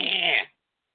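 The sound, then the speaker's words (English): A voice imitates a cat's call with one short, raspy, buzzy sound lasting about half a second, held steady and fairly loud before stopping abruptly into silence. “This cat doesn't meow. It goes.”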